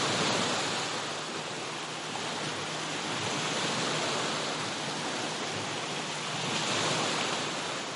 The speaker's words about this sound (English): Nature bless the Balearic Islands and Ibiza and Formentera. And we have an amazing sea. The blue, intensive blue, turquoise color. How relaxed it is, how calm. It's not a brave sea.